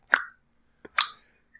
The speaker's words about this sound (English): Now you're just clicking your tongue? God, whatever. Whatever takes it, I don't care anymore.